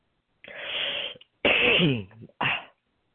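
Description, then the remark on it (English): Three harsh coughing bursts in quick succession: a breathy first one, a longer voiced middle one, and a short final hack. There is no talking. “Coughing day.”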